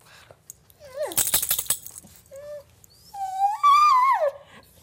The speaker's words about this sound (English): This is my producer Amanda's dog, Truffles. As you can hear, she's whining about something.